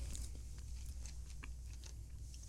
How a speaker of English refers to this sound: How's it feel? He's chewing. He's kind of perplexed.